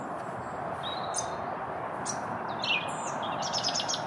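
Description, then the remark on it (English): A song thrush sings near the listener, with bright whistled and chirping phrases and a quick run of repeated notes near the end, over a steady background hiss of wind or traffic. “Yeah, that's definitely a song thrush.”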